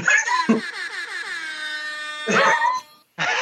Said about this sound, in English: With the air horn.